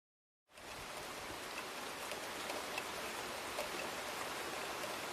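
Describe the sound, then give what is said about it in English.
Steady rain begins after a brief silence and keeps falling, a dense, even hiss with faint scattered drop ticks, constant throughout, with no voices. “One rainy night, Rama went missing for an hour.”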